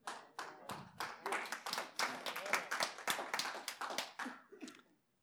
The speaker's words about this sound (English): Wow, thank you. I didn't expect applause on that, but I assume that means you agree with me on that, and that means a lot to me,